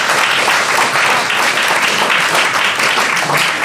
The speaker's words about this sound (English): Anyway, the scores are General Skux, 15 points, and Jin and the Holocrons trail behind on 12 points. Oh. All right, round of applause for General Skux.